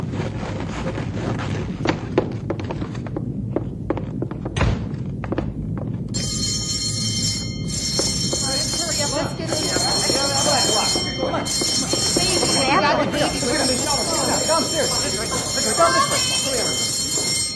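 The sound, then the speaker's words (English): A deep, steady avalanche rumble rolls on from far off, moving at about 150 miles an hour, with a sharp thud early on; partway through, a loud, shrill multi-tone shelter alarm starts blaring over the continuing roar. “It sounds far away, but... Butt is right. At 150-mile-an-hour clip, it won't take long to get here.”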